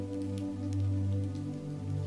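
Raindrops fall in a forest, trickling down branches and landing in scattered, soft splats on mossy stones and the forest floor, a few distinct drips standing out over a steady low humming drone that runs throughout. No one speaks.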